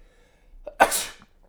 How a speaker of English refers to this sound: I'm bored by your sneeze. Bless you. Bless you.